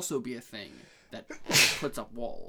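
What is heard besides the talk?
sneeze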